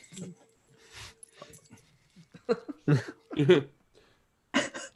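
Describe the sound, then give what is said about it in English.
A puppy whimpers in a series of short, uneven whines and yelps, with brief pauses between the bursts and a few louder cries near the end. “Hang on. Sorry, puppy.”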